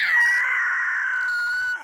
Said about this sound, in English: hit us with that eagle.